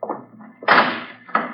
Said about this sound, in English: if you'll please stand away from the vault, Miss Bowen. I should like to close the door